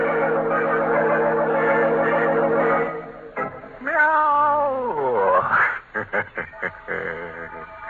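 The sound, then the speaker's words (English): A cat wails tunelessly and loud, its drawn-out yowl sliding up and down in pitch before breaking into a few short, choppy cries. “Of course, I'm sorry that that wall made such an unpleasant noise, such a tuneless wailing.”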